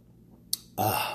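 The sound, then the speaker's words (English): A quick sip of coffee: a faint click, then a short, loud slurping gulp against otherwise quiet surroundings. “Had to take a sip of coffee right quick before I go into it.”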